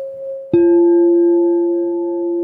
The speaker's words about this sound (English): And that is what you call chiming the bowl.